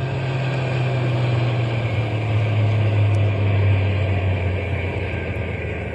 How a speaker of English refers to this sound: We'll drive on a little bit and then stop the truck. But keep the motor idling so we can take off in a hurry if anybody comes along.